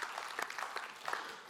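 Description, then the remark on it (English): An audience gives another round of applause for the presenter of a kid spot: many hands clapping at once in a dense, steady patter, fairly soft throughout with a few sharper claps standing out, and no voices over it. “Should we give him another clap?”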